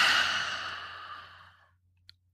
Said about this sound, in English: We're going to begin by inhaling through our nose, 3 quick sniffs, and then we're going to exhale with your mouth. So let's try this together. Ready? Inhaling 3 quick sniffs. And exhale with your mouth.